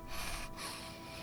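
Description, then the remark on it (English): Heavy, labored breathing: two harsh, noisy breaths in quick succession with a brief catch between them, rasping and fairly loud, with no talking. “What's wrong with your breathing?”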